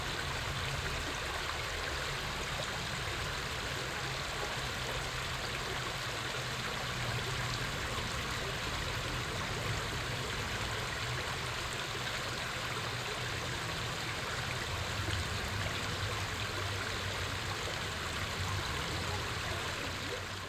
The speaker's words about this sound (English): And now the creek in Muir Woods, San Rafael, California, December 29th, 2018, about 1 o'clock in the afternoon.